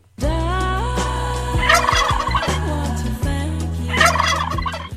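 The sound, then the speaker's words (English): The theme jingle of a radio show segment called Thanks for Turkey: sustained tonal notes and shifting melody, punctuated by two loud bursts of turkey gobbling layered over the music, with no talking. “Hankins, hit the theme.”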